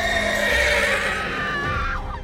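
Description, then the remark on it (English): A strangled, high-pitched horse whinny standing for a unicorn's cry, a single shrill harmonic cry that wavers and then drops sharply in pitch as it fades. It is loud and there is no talking. “Hot blood pooled out over Afra's lap as the unicorn let out a strangled cry.”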